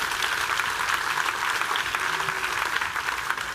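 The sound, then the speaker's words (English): An audience gives a group of people another round of applause, clapping steadily for a few seconds in a dense, even wash of many hands with no pauses and no voices rising above it. “So give these guys another round of applause.”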